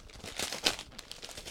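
Wrapping paper, applied in many tight layers, crinkles and rustles in quick, irregular bursts as a gift box is unwrapped, with one sharper crackle partway through and no voices.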